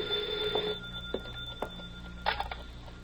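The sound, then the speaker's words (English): A telephone at Harry's Diner rings with a steady, shrill electric tone that runs through most of the moment, broken by a few sharp knocks and a brief rattling burst near the end. No one speaks. “Don't touch that phone. Hey, you. Me? Yeah, answer it.”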